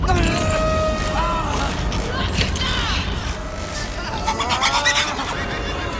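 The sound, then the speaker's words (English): A crowded pen of pigs grunting and squealing continuously, with high, wavering squeals rising over a dense bed of low, rough grunts, loud throughout. “Pigs. Just hanging out, hanging out.”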